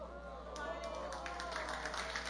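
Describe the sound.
A person claps their hands in a quick, steady series of sharp slaps that begins after a brief pause and continues to the end, heard over a low murmur of voices.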